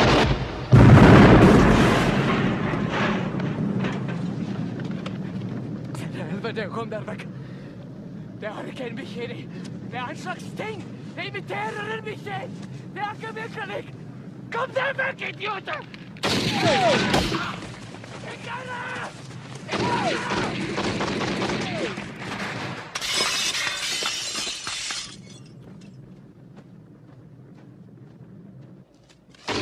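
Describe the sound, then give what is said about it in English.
A loud blast opens, followed by voices talking over a low rumble, then sharp bursts of gunfire and shattering glass as Gary breaks a window and shoots the Swede, who had been shooting at a dog, with a sustained roaring explosion near the end as the helicopter blows up. “He shoots him in the leg, and then you know Gary, you know, breaks the window and shoots you know the Swede.”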